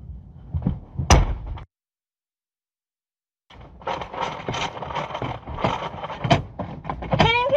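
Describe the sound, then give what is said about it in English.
A car door is yanked and rattled repeatedly without opening as someone inside a pulled-over car tries to get out: a sharp clunk, a brief silence, then several seconds of busy tugging and latch clatter. “Can you open up the door? Get me out! I can't leave! It's not opening”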